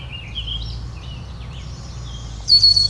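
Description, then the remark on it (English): A red-winged blackbird sings over a steady low rumble, with scattered chirps building to a brighter, louder trilled phrase near the end. “Red-winged blackbird.”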